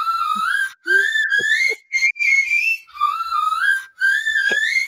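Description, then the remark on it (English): Piercing, high-pitched whistle notes imitating a burglar alarm blare in long sustained bursts with brief gaps, sounding like a shrill alarm. It seems to be a voice imitating the sound, loud, with no talking. “this part of the show being brought to you by the … Burglar Alarm.”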